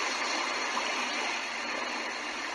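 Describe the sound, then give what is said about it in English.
Gentle ocean waves wash in a steady, continuous hiss of moving water, soft and even with no distinct breaks, filling the background with no voices present. “I mean, right now I can almost like hear the gentle crashing of the waves all around me.”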